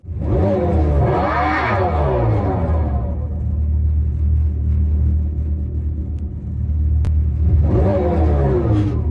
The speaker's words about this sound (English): It doesn't sound like a gas car, but it sounds like a revving motor of some kind.